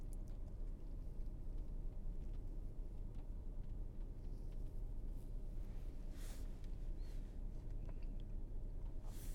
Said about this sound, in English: And so here I am in a car on my own, grappling with the nature of being in this moment.